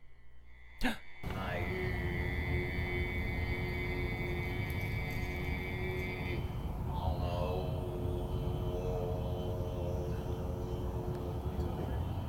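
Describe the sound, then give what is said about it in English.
A man throat-sings a steady, buzzing low drone in imitation of a didgeridoo, with a whistling overtone riding on top that shifts pitch partway through and then holds to the end. “He was doing that double throat thing.”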